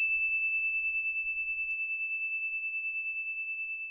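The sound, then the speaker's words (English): A story bell rings once and its single high, pure tone sustains for several seconds with a gentle wavering pulse, fading only slightly. No one speaks. “Okay, here comes the bell.”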